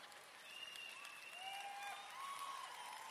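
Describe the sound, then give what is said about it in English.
A crowd applauds steadily, a dense wash of many hands clapping at an even level for a few seconds, with faint tonal squeaks or whistles riding over the noise. “You're clapping now.”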